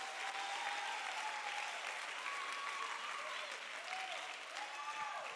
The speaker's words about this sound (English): Woo! Clap your hands one more time in this sanctuary.